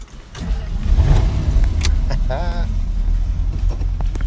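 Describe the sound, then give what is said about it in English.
A classic car's exhaust, with the head pipe running back to the muffler and exiting out the side, gurgles with a deep, steady low rumble as the car is driven, loud throughout, while a brief voice and a faint metallic jingle break through midway. “I just love the gurgle. The exhaust on these were unique.”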